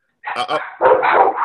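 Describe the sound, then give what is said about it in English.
A dog barks twice in quick, sharp bursts, then lets out a longer, drawn-out vocalization, with voices mixed in around it. “What dog is this?”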